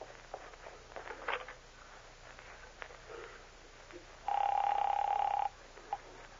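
A telephone in the back of a store rings once as a call is placed, a single steady electronic tone lasting about a second, clear, after a stretch of faint clicks and handling noise, with no one speaking.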